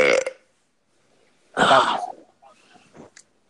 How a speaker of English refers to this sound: Like, if I burp in the podcast, are we going to cut it or no?